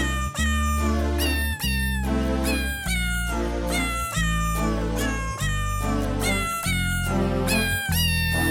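Cat meows pitched into a cheerful Christmas melody, one meow per note in a steady rhythm over a bouncy backing track with a thumping bass line, loud and up front with no talking.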